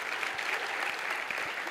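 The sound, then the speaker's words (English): Steady audience applause, a dense wash of many hands clapping at an even, moderately loud level throughout, with no voices standing out. “Give a lot of clap.”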